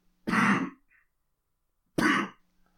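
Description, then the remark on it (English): Two harsh coughs about a second and a half apart, each a short rough burst, with silence around them and no talking. “This cough is killing me.”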